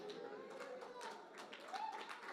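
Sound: audience members clapping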